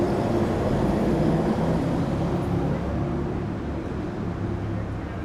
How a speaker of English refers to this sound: that is nice, having something that is a fairly loud, steady noise creates a sense of quiet and calm, even more so in being in this space where there's still a lot of traffic and yeah, it sets a baseline.